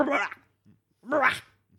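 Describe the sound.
A person imitates a wet dog shaking itself off, with two short, rough, dog-like vocal bursts and a brief pause between them.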